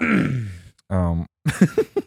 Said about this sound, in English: That's another hiccup.